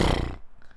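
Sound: voice imitating a horse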